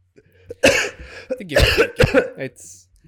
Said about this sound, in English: Yeah, I'm looking at making sure that when I put myself on mute because I'm coughing, I want to make sure that I'm not.